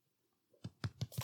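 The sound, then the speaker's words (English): Four muffled, dull claps in quick succession, fairly even in rhythm, made by hands holding paper, with a soft papery rustle in each hit and no talking. “It's hard to clap with holding paper.”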